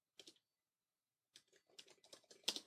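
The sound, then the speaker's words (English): A short burst of clicks opens, then a pause, then a quicker run of crisp key taps on a computer keyboard as "good morning" is typed into a blank document using the ChromeVox screen reader, fairly quiet, ending in a slightly louder cluster. “Now I've got a blank document, and I can start typing. So I'll write good morning.”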